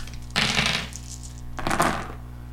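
Two bursts of dice clattering and rattling across a table, one early and one near the end, sharp, with a gap of quiet between, no talking.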